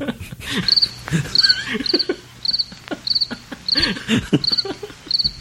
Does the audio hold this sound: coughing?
no